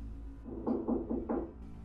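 Four evenly spaced knocks on a glass door, fairly close and moderately loud, rapping in a steady rhythm over a low background hum, with no voices.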